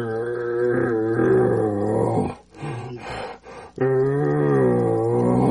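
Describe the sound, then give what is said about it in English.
A deep, raspy bull elk growl voiced through a calling tube without a reed, loud, in two long bursts separated by a short pause with a few rough grunts; a person is practicing imitating the sound. “So I'm practicing the growls in your tube. Like, just grab your tube without a reed and just.”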